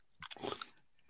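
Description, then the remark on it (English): A single short sneeze: a quick breathy catch followed by a bright, noisy burst that fades within about half a second. No one speaks. “Gesundheit?”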